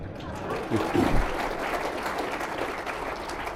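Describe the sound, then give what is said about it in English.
A crowd bursts into steady applause, a dense wash of clapping that holds at an even level throughout, with a brief voice or cheer rising in the first second. “the crowd seems to agree with you.”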